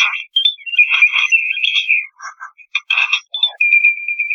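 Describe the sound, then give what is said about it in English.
A bird that learned to make video game noises mimics them with quick electronic-sounding bleeps, warbles and chirps at varied pitches, ending on a long, steady, high beeping tone. No one speaks. “He learned somewhere to make video game noises, and that's what this bird's doing.”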